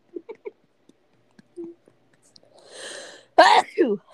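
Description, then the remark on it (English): A single loud sneeze bursts out near the end, preceded by a breathy inhale and a few soft clicks and small vocal sounds. “Bless you.”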